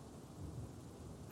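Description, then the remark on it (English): A thunderstorm with a deep, rolling rumble of thunder under a steady wash of rain, ending in a sudden crackling burst. “There's a storm.”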